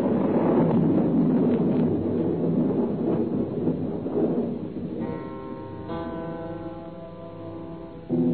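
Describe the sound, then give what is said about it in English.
Deep, rolling thunder from a beginning storm rumbles loudly for about five seconds, then gives way to a steady droning tone that holds to the end. No one speaks. “The storm was beginning.”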